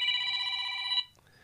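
A telephone rings once with a steady, bright electronic tone lasting about a second before cutting off abruptly, leaving near silence. The ring is fairly loud, with no one speaking.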